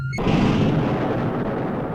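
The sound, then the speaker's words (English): An explosion sound effect bursts in suddenly after a brief tonal note, then rumbles on as a broad, roaring blast that slowly trails off. No one speaks. “I don't know if I like the explosion coming right after the words stream of justice.”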